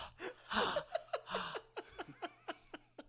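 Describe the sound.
A person breathes heavily, starting with a few loud breathy huffs that turn into a quick run of short, rhythmic puffs, like blowing on hot soup. No words are spoken.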